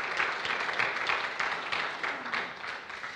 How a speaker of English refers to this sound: Don't clap until the sermon's over.